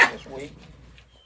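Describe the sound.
A person gives a single loud, rough bark-like yelp, imitating a dog. It starts abruptly and fades into a brief trailing voiced sound; otherwise quiet.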